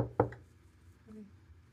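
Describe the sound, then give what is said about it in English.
A sharp knock on a hard wooden surface, knocking on the door of Darius' chamber, a loud rap quickly followed by a softer second one, then near silence with a faint low hum. “All right, so you go to Darius' chamber, you knock on it. There's no answer.”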